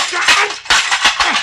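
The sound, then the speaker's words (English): A telephone being smashed: a loud cluster of harsh crashing and clattering impacts, several hits in quick succession with rattling debris, no voices. “the phone, you busted it.”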